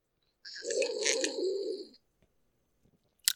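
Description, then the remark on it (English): A loud, drawn-out slurp of a drink lasting about a second and a half, followed by quiet and a single sharp click near the end. “I just want to take a break in the podcast and make a really loud sip.”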